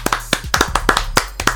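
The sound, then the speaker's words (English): A short burst of hand clapping, sharp claps in a quick, slightly uneven rhythm, as if from just a couple of people applauding briefly, with no talking over it. “Why don't you give us a round of applause for that?”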